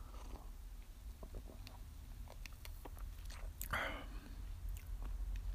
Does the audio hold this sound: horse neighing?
no